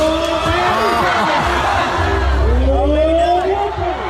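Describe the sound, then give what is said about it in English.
A large crowd at the Ring of Fear Rodeo in Oklahoma roars loudly and continuously, with overlapping shouts, cheers and rising whoops from many voices, plus a low rumble underneath throughout. “Now the video, this is a 1:04 video from YouTube, like, you know, regular crowd video of the Ring of Fear Rodeo in Oklahoma.”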